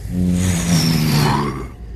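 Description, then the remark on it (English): A spaceship's impulse engines thrust as it steers slowly toward a door to dock, a steady, loud rumbling hum with a whining tone gliding up and then down over it for about two seconds, with no voices. “So you impulse go to engines, the... as Grant said, steers the craft over to that door”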